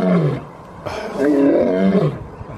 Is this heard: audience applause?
no